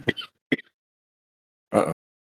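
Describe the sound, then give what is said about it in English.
Abrupt coughing after coffee went down the wrong way: two quick, sharp coughs, a short pause, then one longer, rougher cough. No one speaks. “Coffee went down the wrong tube.”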